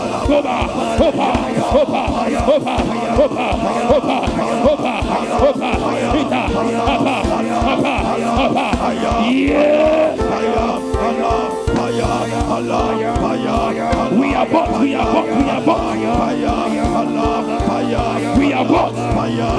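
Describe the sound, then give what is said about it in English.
A large church audience shouts and cheers loudly and continuously while hands clap in a steady, rapid rhythm throughout, during a two-minute prayer of clapping and shouting, with music-like tones droning underneath the din. “Clap your hands and abort for the next 2 minutes.”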